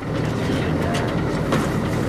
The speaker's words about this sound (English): A research boat idles near the shore of Anacapa Island off the coast of Santa Barbara.